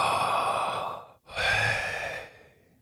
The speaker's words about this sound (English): I'm going to breathe the name of God. I'm not going to use my lips or teeth as I would in communicating as I am right now. I'm just going to breathe. You ready? I literally just had my mouth open. A little fluctuation of the tongue. That's it.